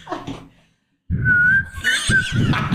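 A person attempts to whistle, producing a single sustained, slightly wavering note, breathy and loud, with brief rustling noise before it and some airy bursts mixed in.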